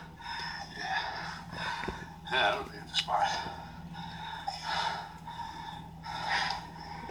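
Heavy, labored breathing with loud, wheezy gasps and huffs repeating roughly every second or so, steady, like an asthmatic struggling for air; no clear words are spoken.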